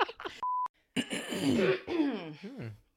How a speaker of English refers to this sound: Cough break. I was saving that up.